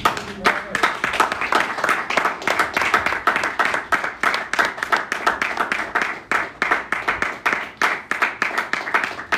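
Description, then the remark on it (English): An audience at a Christian church service claps their hands for the Lord in a steady, dense burst of applause that continues for several seconds, the many overlapping claps forming a bright, lively rhythm with no voices standing out. “Can we put our hands together for the Lord?”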